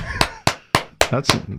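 A single person claps their hands five times in a steady, fairly quick rhythm, each clap sharp and bright, with a voice briefly talking under the last couple of claps.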